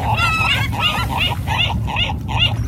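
Seagulls call out in a quick, steady series of about six or seven loud, squawking cries while being fed bread, each one harsh and nasal, with a low background rumble underneath and no talking.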